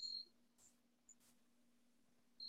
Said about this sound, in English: You hear the crickets? I don't know. I hear the crickets. I don't know. It doesn't sound authentic.